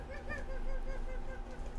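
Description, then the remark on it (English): A game show buzzer sounds in a series of rapid, nasal, honking pulses, steady and fairly loud over a low background rumble. “That's my first time hearing the buzzer.”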